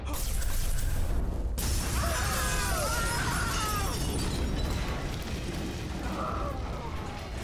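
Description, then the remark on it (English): A sharp gunshot cracks, and glass shatters immediately, with bright shards tinkling and scattering for a couple of seconds over a loud, steady low rumble. “shoot the glass!”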